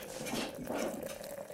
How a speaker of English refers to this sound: I'm going to pour myself some coffee.